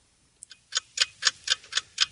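A clock ticks steadily and crisply, about eight sharp ticks at an even quick pace after a brief silent moment, with no voices.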